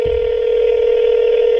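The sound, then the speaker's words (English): A loud, steady electronic telephone tone sounds without a break, like a dialing tone on a phone line, as a call is placed to a friend who does not pick up, with no voices. “I'm calling Ryan right now, and I know he's online because I see him”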